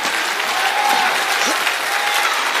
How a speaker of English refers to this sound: Oh, clap your hands to the perfect one.